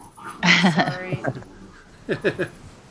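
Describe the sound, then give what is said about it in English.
Two dogs playing tug with a Kong bone toy, giving a burst of strained whining and growling noises, then a quick series of three short yelping grunts. “They're playing tug with a Kong bone.”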